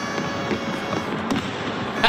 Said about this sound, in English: Yeah, it's playing. See? There's my fireworks. Oh, is that what it was? Yeah, but they were premature.